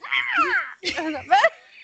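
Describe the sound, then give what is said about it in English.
A person squawks in imitation of a pterodactyl: two harsh, screechy, sliding cries with a raspy, high-pitched edge, the second call rising and breaking near the end. “That sounded more like a chicken than a pterodactyl, but you know.”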